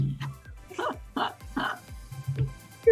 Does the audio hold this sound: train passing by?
no